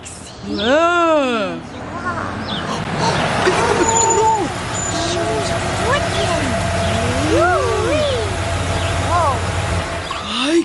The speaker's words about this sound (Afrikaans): Sy wiele! Hoekom het hierdie vragmotor hier voor jou maatjie hulle se huis gestop